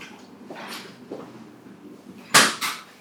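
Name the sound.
door opening or closing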